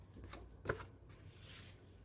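Quiet paper rustling as the pages of a junk journal are turned during a flip-through, with a sharp papery snap near the middle and a softer swish of a page settling afterward. No one speaks.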